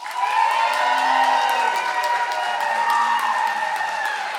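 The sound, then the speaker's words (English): An audience claps and cheers loudly and steadily for several seconds, with dense applause under sustained whoops and shouts from many voices, voting by applause that they like a 1980s Christmas hit song. “If I may ask the audience, by sound of applause, who likes the song”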